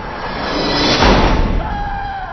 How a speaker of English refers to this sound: I had chills. The end scene when the guy gets up and goes and says, "Game over," and shuts that door. Game over.